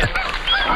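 A brief burst of pink-footed goose honking, several overlapping nasal calls from a flock, loud, with no voices over it.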